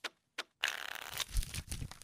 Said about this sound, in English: Just shuffle those cards.